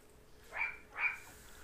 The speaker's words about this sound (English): Sounds like a little dog. She is. She's extremely small. What kind? What kind of dog do you have again? Chihuahua, terrier, something.